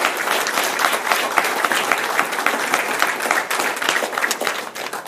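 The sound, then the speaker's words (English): A crowd of people applauds together in praise of the Lord, a dense, steady wash of many hands clapping for several seconds at an even, fairly loud level. “Come on, let's give the Lord a hand clap.”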